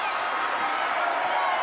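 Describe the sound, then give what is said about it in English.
A large hometown crowd cheers in a loud, steady roar that holds without a break as Dave Schultz grabs a hockey stick, a dense wash of many voices rising together with no single voice standing out. “Getting the pop here from the hometown crowd.”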